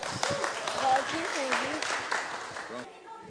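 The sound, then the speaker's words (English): An audience applauds a suggested answer in a steady, dense wash of clapping for almost three seconds, with voices calling out over it, before the noise drops away abruptly. “Okay, very good, round of applause for that one.”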